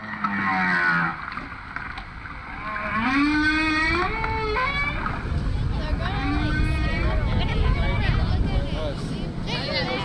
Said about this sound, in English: A hydrophone the crew dropped into the water records the sounds of a lone male humpback trying to sweet-talk a female.